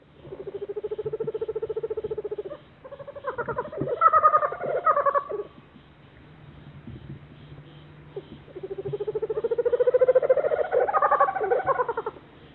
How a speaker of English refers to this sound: No, those weren't kookaburras in Australia. That was actually a couple of Puerto Rican owls, Gymnasio nudipes.